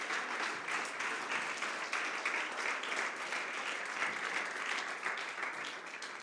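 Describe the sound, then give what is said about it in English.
A church audience claps their hands in steady, sustained applause as a hand clap of praise for the fathers, a dense crackle of many overlapping claps that stays loud and even throughout with no voices on top. “And can we give our fathers one more hand clap of praise as we're seated?”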